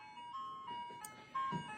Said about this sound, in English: Fucking ice cream truck. It's like parked in front of our house after I told my kids no.